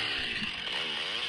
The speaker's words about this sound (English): Is that the Harley? Or that was Chainsaw. That was Chainsaw. Chainsaw and Harley sound very similar. They sound very similar.